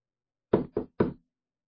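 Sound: knocking on a door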